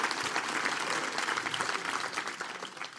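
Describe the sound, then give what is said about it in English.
A sizable audience at Riverside Church applauds steadily, dense clapping at a constant level throughout. “give her a massive round of applause.”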